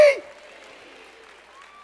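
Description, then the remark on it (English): A short, loud burst of applause from a church audience at the very start quickly fades into a quiet, murmuring ambience that carries on to the end. “If you believe that, clap your hands and say, that's me.”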